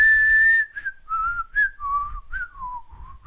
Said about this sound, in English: Can you whistle?